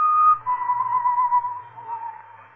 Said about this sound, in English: The whistling was somewhere in the building. I listened. Where was it coming from?